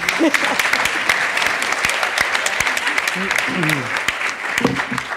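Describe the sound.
Steady audience applause: dense, crackling clapping from many hands that holds at a constant loud level throughout, with a few voices calling out or murmuring underneath.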